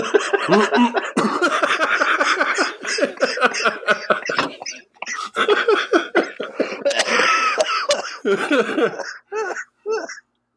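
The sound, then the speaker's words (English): A prolonged coughing fit, loud, with rapid harsh bursts repeating for about ten seconds, a few brief pauses near the end, and raspy throat sounds between coughs. “I'm glad I made it this far without coughing.”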